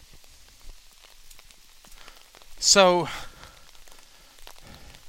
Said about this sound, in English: I sat here, it's like 2 p.m. or whatever. It literally looks like it's 7 or 8 p.m. It's so overcast and raining.